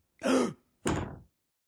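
A door is kicked open in two loud, rough bursts, a forceful bang followed moments later by a second heavy crash, with nobody talking.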